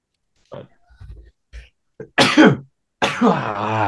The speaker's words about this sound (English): All right, if you're gonna cough, leave the room.